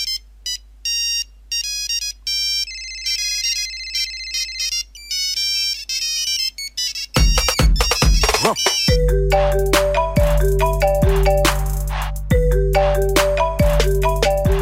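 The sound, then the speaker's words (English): A cell phone ringtone plays a bright, beeping melody of quick electronic notes for several seconds, then gives way to a louder, fuller music track with a steady bass beat. “But in Africa, it's not all about Spotify or iTunes. It's about cell phones.”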